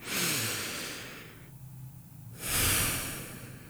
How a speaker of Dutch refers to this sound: Adem nog eens diep in en uit.